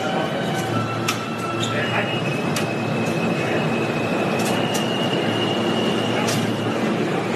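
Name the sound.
subway train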